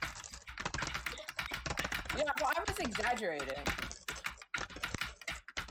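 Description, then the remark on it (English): Rapid, forceful typing on a computer keyboard held right next to the mic with noise suppression turned off, a dense clatter of key strikes throughout, with a person talking briefly over it in the middle. “Hold on, I'm gonna play my keyboard.”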